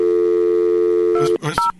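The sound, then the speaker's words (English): A steady telephone dial tone hums loudly, then gives way near the end to a few quick, sharp keypad beeps as a number is dialed. “Get him on the phone.”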